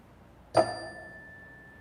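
A single meditation chime is struck once, a bright metallic ring with clear high overtones that lingers and slowly fades over the following second or more. No one speaks.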